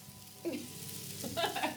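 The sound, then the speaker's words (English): Food sizzles in a frying pan with a steady crackling hiss that runs the whole time and grows a little busier toward the end. “Sizzling.”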